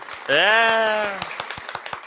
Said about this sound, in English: Is that a golf clap or is that a subtle clap? That's more of like a mix between the Masters and Ryder Cup, somewhere in the middle. Probably like the Hilton Head clap.